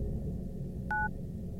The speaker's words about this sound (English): And the phone hangs up. I'm still standing there, holding the phone to my ear.